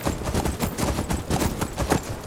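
Rapid, steady clip-clop of a ridden horse's hooves at a gallop in a video game, the hoofbeats loud in a brisk continuous rhythm, with no voices over them.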